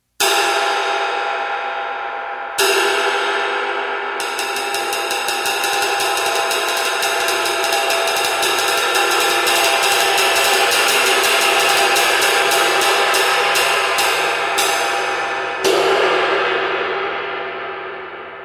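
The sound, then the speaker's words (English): A 22-inch 30th anniversary Istanbul Agop ride cymbal rings out alone, a few struck hits swelling into a steady, quick ride pattern over a bright, shimmering wash that lingers and slowly fades at the end. “Here's a quick example of that 22-inch 30th anniversary Istanbul Agop ride.”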